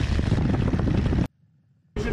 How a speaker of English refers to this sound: This video is framed as him just like going for a normal flight, and he just has like he just so happens to have a recording of the plane ride. So it looks all normal.